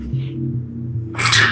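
A cat makes a sudden, loud, harsh noise near the end, rising over a steady low hum that fills the rest of the moment.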